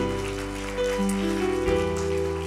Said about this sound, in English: Give the Lord a clap tonight.